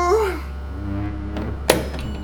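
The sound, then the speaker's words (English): A single solid thud, like a heavy door shutting, lands sharply about two-thirds of the way through, over a steady low hum with brief vocal sounds early on. “You have 1 minute from when the door closes.”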